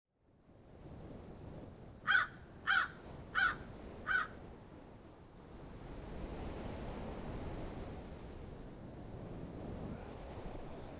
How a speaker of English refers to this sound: A stark blue sky with seagulls flapping in numbers.